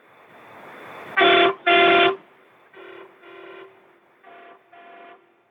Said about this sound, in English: I don't have the old pull chain anymore. But that is the coolest thing. Even the most hardened truck driver gets a smile on his face when a kid asks for that horn to be honked. I'm doing the horn motion right now.